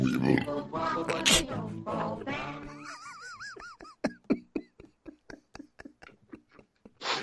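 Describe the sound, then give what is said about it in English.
A loud, drawn-out belch rumbles for a couple of seconds, then gives way to squeaky chirps and a rapid series of sharp clicking pops. “Holy fuck! Was that burp from?”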